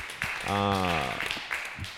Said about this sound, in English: So, hey, let's give yourselves a round of applause. That's great.